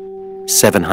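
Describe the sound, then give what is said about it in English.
A steady, clean 384 hertz sine tone, one of the solfeggio healing frequencies, hums alongside two other pure tones for about half a second. Then a hiss and a voice break in, cutting the tones off. “384 hertz.”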